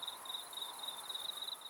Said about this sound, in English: And even insects have their own code of clicks, buzzes, and squeaks made by the percussion on their hard outer shells.